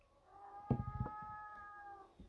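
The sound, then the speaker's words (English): A cat, addressed as Sir Cat, lets out one long, drawn-out meow with a steady wavering tone, fairly quiet overall, while a few soft low thumps sound beneath it near the start. “Sir Cat.”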